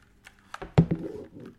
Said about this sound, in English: Guess what I've started using? What? A keyboard. An old-fashioned keyboard.